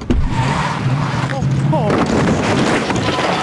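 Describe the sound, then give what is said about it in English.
A car engine strains under load as the car pulls down a restaurant's breakfast sign, a loud, steady roar with a low droning hum that holds for a few seconds, broken by brief high squeaks and rattling noise. “He's going to pull the sign down using his car.”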